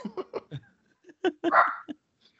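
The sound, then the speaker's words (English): A burst of sharp, repeated dog barks, about eight yips in quick succession with one longer, louder bark near the end, with no talking. “Yeah, I mean, those dogs are obviously as upset as I am.”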